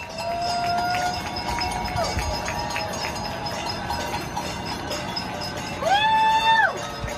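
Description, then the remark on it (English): A crowd in New York City claps and cheers for healthcare workers at 7 p.m., without pause in a dense, steady roar. A whistle sounds early on, and a brief harmonic horn-like tone rises and falls near the end. “Every night now at 7 p.m., this is what it sounds like in New York City.”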